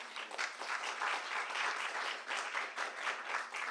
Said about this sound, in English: So can we clap for them? Okay.